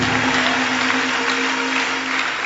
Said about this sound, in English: Hallelujah. Clap your hands for Jesus. If you believe you are receiving God's help, then clap your hands for Jesus. Because God is helping you.